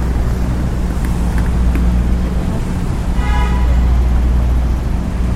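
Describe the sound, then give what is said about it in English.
A tour bus's engine rumbles low and steady amid busy New York City street traffic as the bus jerks forward bit by bit, with a brief high-pitched whine rising partway through, like a brake squeal or passing horn. “It's like, this tour bus is like jerking forward bit by bit.”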